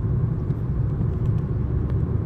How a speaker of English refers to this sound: I'm driving right now, guys. Gotta cast and drive. That's how it's done.